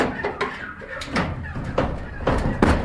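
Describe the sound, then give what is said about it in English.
A man opens a door to let poultry out, with a series of clunks and rattles of the latch and frame, while the birds cluck and coo faintly in the background. “just heading to the door there and about to open up and let them out.”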